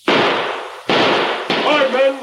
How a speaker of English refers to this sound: Where's that shooting coming from? The woods. That came from the south.